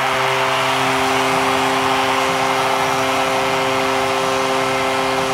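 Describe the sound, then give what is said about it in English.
A Las Vegas hockey arena crowd roars after Mark Stone scores from the left circle, giving the Vegas Golden Knights a 1-0 lead, a loud, dense wall of noise that holds steady for several seconds, with a low tonal drone running underneath the whole time. “Listen to this crowd.”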